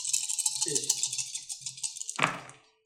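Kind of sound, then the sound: household object, dice rolling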